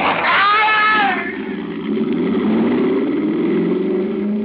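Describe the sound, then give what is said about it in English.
A Mercedes car engine revs up and accelerates, its pitch climbing steadily, after a brief high tire squeal at the start, skidding on a wet road. The sound is loud, with no voices. “I had no idea the Mercedes had such power. It leaped forward under the accelerator.”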